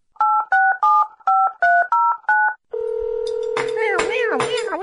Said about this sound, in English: I have to make a phone call.